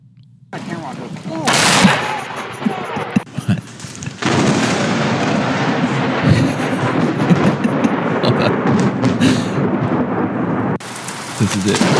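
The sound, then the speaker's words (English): A loud lightning crack bursts out as a man is struck by lightning, then heavy rumbling thunder and steady pouring rain fill the storm, with a second sharp crash near the end and faint voices underneath. “And this is a video of him getting struck by lightning.”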